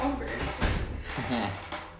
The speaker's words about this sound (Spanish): Oh, este ruido es la silla que hace un montón de ruido.